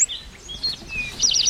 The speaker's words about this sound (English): But if you listen to your left-hand side, there's yellow warbler. And it's singing, sweet, sweet, sweet, I'm so sweet, or sweet, sweet, sweeter than sweet.